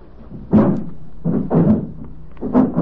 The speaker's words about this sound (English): Oh, listen. Huh? The front door.